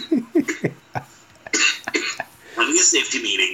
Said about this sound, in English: Oh yeah, he's already coughing his brains out here.